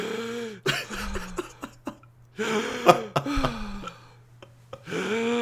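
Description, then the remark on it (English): A person imitates the strange, heavy mouth breathing of an old woman who fell asleep in a chair during a movie: a few drawn-out, raspy, partly voiced breaths with wet clicks and catches, coming in three uneven bursts with short pauses between. “And then the way she was breathing was so weird.”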